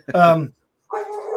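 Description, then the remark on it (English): A floppy-eared dog gives a loud, drawn-out bark, then after a brief silence lets out a second, higher and more whining bark that carries on to the end. “That's dog a good is point. Going crazy in there”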